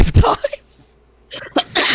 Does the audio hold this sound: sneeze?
yes